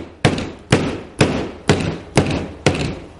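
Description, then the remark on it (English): A blacksmith bangs: six loud, evenly spaced bangs like a hammer striking metal, repeating about twice a second with short ringing decays between them, with no talking. “He passed by a blacksmith. The blacksmith was banging.”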